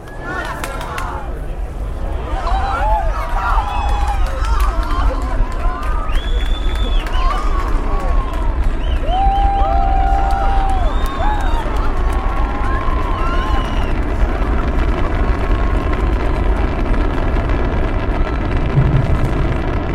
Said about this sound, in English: Engines will start at 6 seconds before liftoff. Hey! Oh, my gosh! 5, 4, 3, 2, 1!